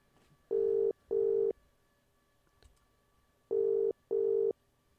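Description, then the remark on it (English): A telephone ringback tone purrs in two double bursts, each pair of steady low beeps followed by a pause, heard clearly with no one talking. “We're ringing.”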